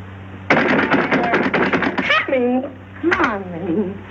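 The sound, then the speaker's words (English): A rapid volley of about a dozen loud, hard bangs pounds on a door in rainy weather for over a second, then a person's voice speaks briefly, pauses, and speaks again. “I thought I'd have to break the door down.”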